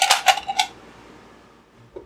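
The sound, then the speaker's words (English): A quick clatter of three dice being rolled on a table during a tabletop game, several sharp clicks and rattles in rapid succession, fading within a second, then quiet with a faint knock. “go ahead and roll 3 dice and take the highest 2 results as you roll your run in with Rad Dan.”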